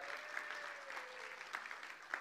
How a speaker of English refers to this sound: We can give her another cheer. Come on.